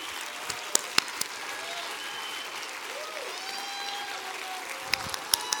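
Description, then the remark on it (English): An audience stands and claps their hands for Jesus Christ in a dense, steady wash of applause, with a few sharper, louder claps standing out and faint cheering or voices mixed in underneath. “Stand to your feet and clap your hands for Jesus Christ right now.”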